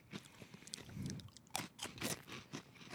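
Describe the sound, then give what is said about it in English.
Crisp crunching of crunchy Cheetos cheese snacks with lime flavor being chewed, a rapid series of brittle cracks and bites with no talking. “Not the opposite, but in the same category, the opposite of a cheese curl because it's crunchy.”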